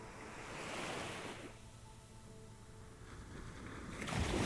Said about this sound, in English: Gentle aquamarine waves glide slowly over the flat sands.